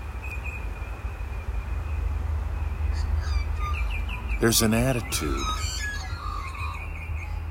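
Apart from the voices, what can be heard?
birdsong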